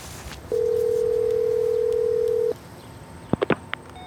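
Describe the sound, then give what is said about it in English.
A steady, mid-pitched telephone voicemail tone sounds clearly for about two seconds, then stops, followed by a few quick clicks from the handset. No one speaks. “Voicemail.”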